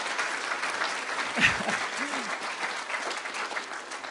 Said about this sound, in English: Give them another, both of them, a big, huge clap.